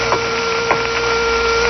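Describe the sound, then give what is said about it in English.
A few uneven, heavy footsteps thud on a wooden surface at irregular intervals as they come closer at night, set against a steady, humming tonal drone that continues throughout. “Then as they came closer, you heard uneven, heavy-footed steps.”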